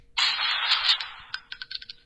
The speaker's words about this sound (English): That is a gun firing, reloading, and then the shells hitting the ground. God. That was the default. I just spent so long trying to figure out how to change it. Really stressing me out getting texts in bed.